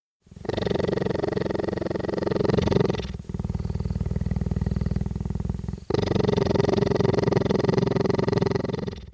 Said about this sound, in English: Because right on the front page, he's got an awesome video of himself petting and recording a purring cheetah with a microphone. Here's what it sounds like.